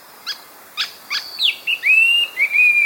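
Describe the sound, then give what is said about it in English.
A green magpie, a vivid green forest bird with bright red wings and a red beak, in Southeast Asia, calls with a few sharp, rising chips followed by a series of clear, drawn-out whistles, loud against a quiet, faintly hissing background. “We're in Southeast Asia, and unlike the black and white magpies of open landscapes in the American West, this forest bird is vivid green with bright red wings and a red beak.”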